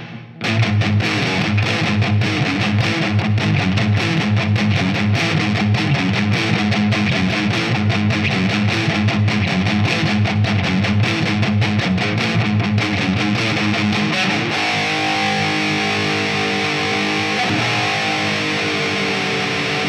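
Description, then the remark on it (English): A heavily distorted electric guitar riff chugs in a dense, driving rhythm, loud, then gives way to longer sustained, ringing chords near the end. No voices. “That's another great riff that used to start off with not quite so much distortion, lots of muting.”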